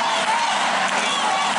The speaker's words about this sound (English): And this, support athletes by clapping and not singing or chanting. That's right, chants like this are forbidden.